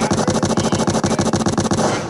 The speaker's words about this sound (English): My gunshots for my boy Alex Smith, man. He my boy, man.